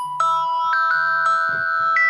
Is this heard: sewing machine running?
no